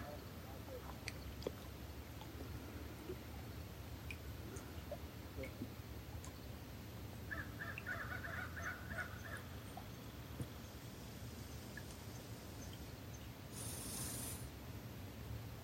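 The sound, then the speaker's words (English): A few crows caw in a short, quick series over a steady low outdoor rumble, like wind and water, on the shore of Lake Superior (Gitchigami), with scattered faint ticks and a brief hiss near the end. “Except for the crows, of course. The crows are being the crows.”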